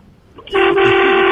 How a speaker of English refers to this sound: Honk that horn.